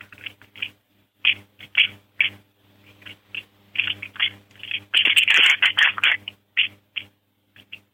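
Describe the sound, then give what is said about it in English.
Whitetail bucks grinding antlers while fighting: a series of irregular, raspy scraping bursts that build into a dense, louder stretch of grating before thinning into scattered scrapes, over a low steady hum. “Then grinding.”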